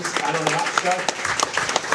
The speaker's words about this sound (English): Now they're both hugely popular figures, sadly passed away earlier this month, so there'll be a minute's applause for those two men who gave everything for the club, and there'll be a minute's applause for them now.